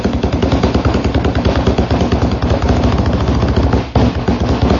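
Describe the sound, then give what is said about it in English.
Fast, steady thumping on a tabletop, loud, rattling along in a dense continuous rhythm with a brief hitch near the end and no talking. “No, this is a very bad table for thumping.”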